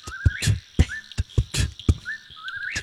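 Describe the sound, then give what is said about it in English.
Someone whistles an imitation of a whippoorwill call, short rising notes repeated a few times, fairly clear, over a rhythm of sharp percussive thumps like a vocal beat. “Whippoorwill.”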